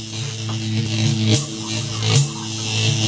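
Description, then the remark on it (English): A steady electrical buzz with a low hum underneath, broken by two brief crackling bursts, from a machine that got water inside, plugged in and run to test it. No one speaks. “No, it's making buzzing noises from the water where the water went in.”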